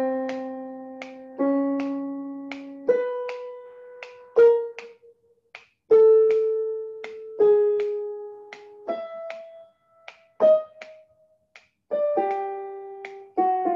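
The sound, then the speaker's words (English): Crisp finger snaps, added to give a jazz feel, click at a steady, regular pulse over a slow line of sustained notes of a twelve-tone row that step between pitches, with no voices present. “Now, if I just add a couple of finger snaps to give the impression that I'm a jazz guy, I get.”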